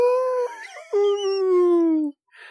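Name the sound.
wolf howl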